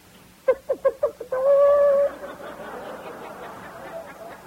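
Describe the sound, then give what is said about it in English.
A single voice in an army formation imitates a hen's cackle after laying: five quick, clipped clucks followed by one long, drawn-out squawk, loud, fading into a quiet murmuring background. “It was the sound of a chicken laying an egg, which in the Army has special connotations.”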